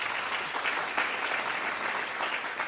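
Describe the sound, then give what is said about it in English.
Steady audience applause at an Intelligence Squared debate as Stuart Baker, former Assistant Secretary for Policy at the Department of Homeland Security, is introduced; a dense wash of many hands clapping at even loudness throughout, with no voices standing out above it. “That's an applause line.”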